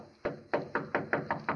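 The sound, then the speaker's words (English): Seven firm knocks on a wooden door in a steady, insistent rhythm, fairly loud, with no voices in between. “Who's there? Dr. Kepler. Who is it? I have found my way back to you. Open the door”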